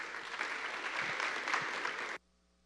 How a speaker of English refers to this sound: Why don't you give John a round of applause?